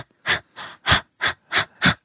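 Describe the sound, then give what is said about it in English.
A person imitates a dog panting: six quick, breathy huffs in a steady rhythm, fairly loud, with no talking. “That's dog panting.”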